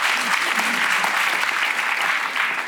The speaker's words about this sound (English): Yeah, look at this round of applause there